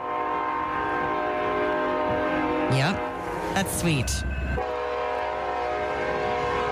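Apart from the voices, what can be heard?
train whistle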